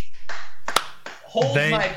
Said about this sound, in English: Dude, Black Manta. Black Manta looks good as shit. Yeah, exactly. I will clap for that too